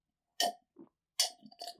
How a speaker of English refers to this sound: Jeez, slurp a little louder, will you? Good grief.